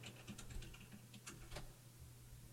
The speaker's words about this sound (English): Paid no attention to the typing in the background